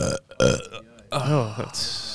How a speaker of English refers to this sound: Will's not a fan of your burps whatsoever.